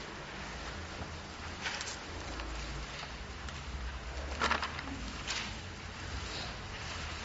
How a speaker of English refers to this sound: You know, as I say that, it's assuring to hear this rattling of paper. Okay? Now I know that some are doing it electronically. And I'm surprised if some of those phones and tablets don't even make little paper noises as you go through the pages